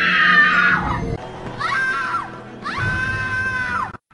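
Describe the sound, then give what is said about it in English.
A stock film death scream in a female voice, a female version of the Wilhelm scream: three loud, piercing, high-pitched shrieks in quick succession, each rising and then falling away, with no talking around them. “There's like a female version as well, which is like...”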